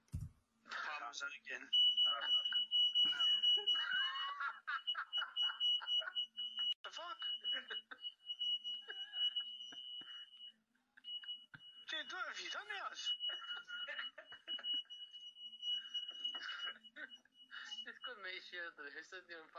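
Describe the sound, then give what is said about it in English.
A smoke alarm, set off by smoke drifting up into it, sounds a continuous high-pitched electronic tone, briefly cutting out partway through, while people talk and laugh over it. “But it's wafted right up into the fire alarm.”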